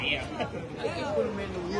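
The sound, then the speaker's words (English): Steady chatter of a big crowd at a police scene, many overlapping voices forming a continuous babble, with a few individual voices rising briefly above the murmur throughout. “All right, folks, we have a big crowd here.”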